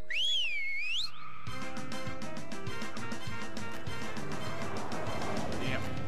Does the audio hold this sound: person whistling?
yes